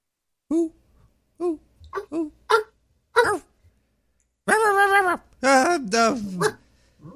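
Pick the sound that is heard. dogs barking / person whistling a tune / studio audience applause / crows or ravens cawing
dogs barking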